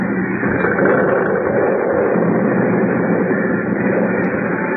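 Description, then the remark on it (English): A building, Harris Hall, collapsing into a hole after its foundation was undermined: a loud, continuous rumbling roar of crashing debris that holds steady without distinct individual impacts, with no voices over it. “The building. The foundation's undermined.”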